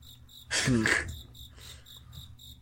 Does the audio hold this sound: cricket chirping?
yes